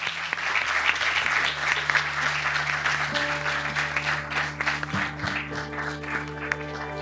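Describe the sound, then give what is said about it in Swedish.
An audience at a UI event in Sweden applauds the panelists steadily for several seconds, a dense wash of clapping hands with a low musical hum and sustained tones rising underneath. “Men en stor applåd till våra kära panelister.”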